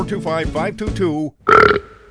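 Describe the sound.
A person talks briefly, then a single loud, short, brash burp erupts right after, fading quickly into silence.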